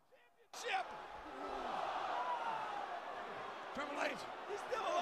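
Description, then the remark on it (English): A big wrestling arena crowd erupts into loud, sustained booing after a brief quiet moment, a dense roar of jeering voices that swells and holds, with a few sharper shouts rising above it. “Yeah, see, you hear everybody shitting on it too. You hear the crowd shitting on it.”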